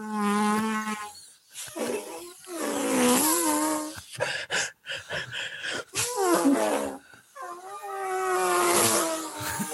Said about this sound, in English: Somebody flew a drone. Which direction did that come from?